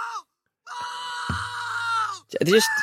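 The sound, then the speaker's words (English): A recorded person lets out a long, strained scream lasting over a second, then a second shorter cry that rises sharply in pitch. Both are loud, with no other sounds. “It's just human screams.”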